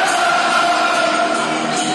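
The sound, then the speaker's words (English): A loud, dense football stadium crowd roars continuously at a Bristol City match in South Bermondsey, a steady wall of cheering and shouting voices with no pauses for the full two seconds. “Crowd are pumped up.”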